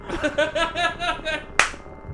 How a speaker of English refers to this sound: That's right. It's a slow clap.